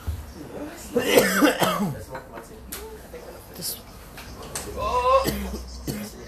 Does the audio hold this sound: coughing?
yes